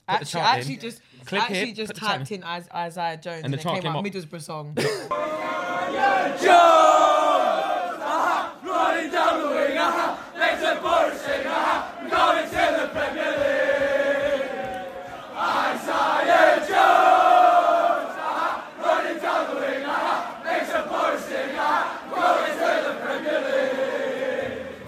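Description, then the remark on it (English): A loud football crowd chants a player's name in unison, many voices repeating a short sung phrase in a steady rising-and-falling rhythm, after a brief warbling intro at the start. “They're screaming it.”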